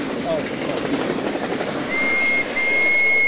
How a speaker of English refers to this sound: Oh. Got a train whistle with it.